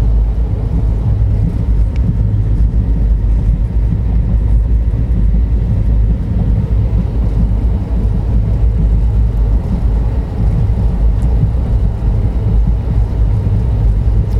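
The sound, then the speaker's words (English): A steady, heavy low rumble fills the whole recording, the constant droning roar of riding inside a moving train travelling to Coimbatore in Tamil Nadu, India, at 4 o'clock in the morning, with faint rattles on top and no voices. “So yeah, I have about, it's 4 o'clock in the morning, and I have about 40 more minutes before this train arrives Coimbatore in Tamil Nadu, and that's the last major leg of this journey.”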